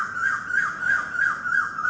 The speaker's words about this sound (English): See, even the bird wants to remind you something. The bird is just saying that, listen to me.